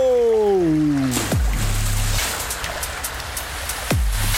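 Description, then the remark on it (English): A falling, whistle-like glide swoops down into a thump and a rush of splashing water, then another quick downward swoop and thud near the end, as someone slides down a pipe carrying stream water like a water slide. “The water's going down a pipe.”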